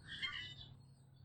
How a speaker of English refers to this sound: Got some starlings making their racket in the tree behind me.